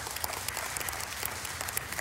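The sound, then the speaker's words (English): A lone audience member gives a weak, tepid clap, about eight soft, evenly spaced claps over a low background murmur, with no one speaking. “That got a weak, tepid clap from one person.”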